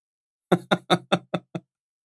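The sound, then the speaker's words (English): Six firm knocks on a door by cyborgs, in a quick, even rhythm, each a little softer than the last, with nothing else around them. “The cyborgs are knocking at the door.”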